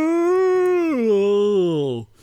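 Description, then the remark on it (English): A person voices an exaggerated fake yawn for Garfield yawning in a comic panel, a loud, drawn-out tone that holds steady, then slides lower in pitch for about two seconds before stopping abruptly. “Because you made a fake yawn noise.”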